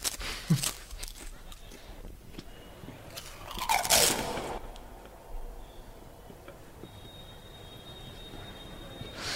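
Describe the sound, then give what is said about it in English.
Loud crunching of a potato chip from a record-breaking loud chip packet from India, clocked at 110 dB, with sharp bursts of crackle and a big bite around the middle, then quieter chewing and faint rustling. “Sounds like a pretty loud chip as well.”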